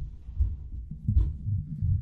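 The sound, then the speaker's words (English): Dull, muffled thumps and bumps from a dog jumping and bouncing around upstairs, arriving in an irregular, low, heavy rhythm with a brief sharper knock partway through. No one speaks. “People may hear jumping and bouncing in the audio. That would be my dog going nuts upstairs.”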